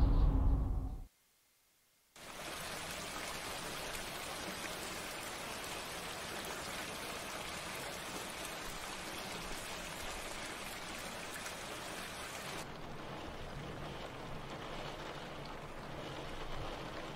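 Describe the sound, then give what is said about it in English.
Steady rain pours down outside in a dense, continuous hiss, fairly loud, after a brief low rumble and a second of silence at the start; no one speaks. “It's raining outside.”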